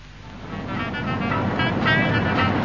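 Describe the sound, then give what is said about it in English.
A steady, continuous rumble of a car driving along a road toward Devon, with low engine drone and broad road noise holding at a fairly even level throughout. “Darling, are you planning to drive all the way to Devon non-stop?”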